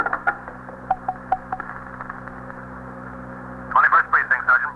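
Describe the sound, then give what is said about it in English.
A telephone being dialed, a quick series of short clicks and tones over a steady low hum, followed by a man beginning to speak near the end. “is this phone to T.S.?”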